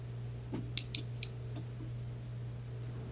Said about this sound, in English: It's that joint's so squeaky. So squeaky, right? You can hear my squeaking. It scares me when I move it sometimes. Just I'm like, this is so squeaky.